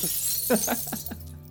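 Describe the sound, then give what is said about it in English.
Mirror glass shatters in a bright, hissing crash, followed by four quick tinkling bursts of falling shards at a steady rhythm before the noise thins out. “I'm gonna destroy it.”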